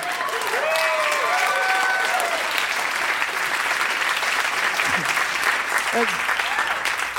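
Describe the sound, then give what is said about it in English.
A crowd applauds steadily for several seconds, a dense, even wash of clapping, with brief cheers and voices rising faintly over it near the start and again toward the end. “That was nice. I like that applause.”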